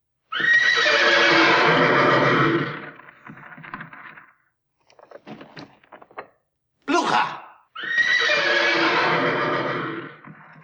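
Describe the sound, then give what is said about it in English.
Two loud, wild horse whinnies, one at the start and one at the end, with clattering hoof sounds and a sharp thud in between. “So yes, every time her name is said, like, lightning strikes and the horses go crazy.”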